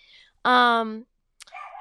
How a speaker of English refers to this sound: So yeah, that was Charlie. So me, Charlie, the dick douche dog that I have. Thank you. Yeah, keep barking. It's so cute. It's perfect. It's perfect for the pod. It's perfect background noise. Keep going.